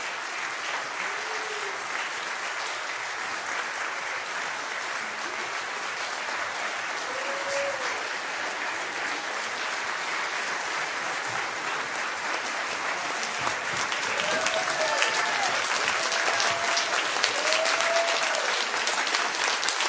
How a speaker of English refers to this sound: Now, I think clapping is like what Augustine was talking about, jubilation. You know, it's sound, it's motion, but it's beyond intelligible word.